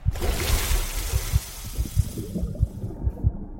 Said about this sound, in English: Something unseen moves in the water, dives in.